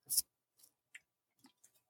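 Two people's cups knock together in one sharp, bright clink in a birthday cheers, followed by a few faint, scattered taps and clicks in otherwise quiet surroundings.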